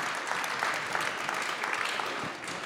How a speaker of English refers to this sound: Oh, hello, yes. Henry Kelly. Well done. Round of applause.